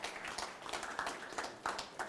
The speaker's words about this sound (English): If you can be a blessing, amen, give the Lord a clap.